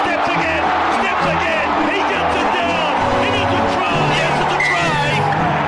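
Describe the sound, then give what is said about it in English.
A big sports crowd at an Australian sporting match roars loudly and continuously, a dense wall of cheering and shouting with individual yells rising out of the din, overwhelming throughout. “And the crowd's starting to go wild.”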